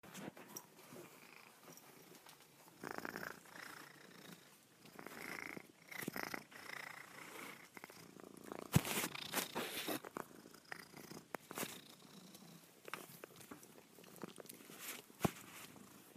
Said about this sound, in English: Up first is the weekly purr, featuring my very own cat, Charlie. She's a perfect little nihilist cat. She doesn't like anything or anyone but food.